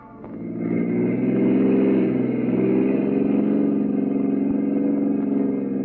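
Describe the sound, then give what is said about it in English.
A car engine turns over and revs up, then settles into a loud, steady mid-pitched drone as the vehicle pulls away, with no voices. “Jordan took out the gun he'd been carrying and made me get into his car.”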